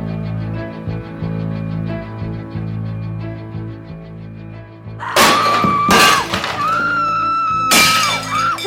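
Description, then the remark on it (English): A low, steady rumbling drone gives way to three loud crashes of something smashing and breaking, each followed by ringing, scattering fragments. “Smashing thing.”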